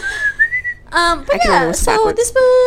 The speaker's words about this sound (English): I can't even whistle.